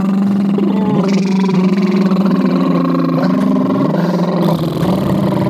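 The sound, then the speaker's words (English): A person makes a loud, sustained motorboat sound with their lips and voice, a buzzing, wavering drone that runs for several seconds with slight pitch shifts. “You go, motorboat.”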